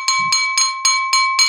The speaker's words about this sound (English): There's a clinking of glass and the hubbub dies down.